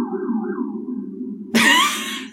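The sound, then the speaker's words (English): A police siren outside an apartment holds a steady, droning wail at moderate volume, then a sudden loud, harsh burst of noise cuts in over it for the last second. No one speaks. “What was that? That's like a special siren.”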